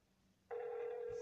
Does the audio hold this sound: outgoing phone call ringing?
yes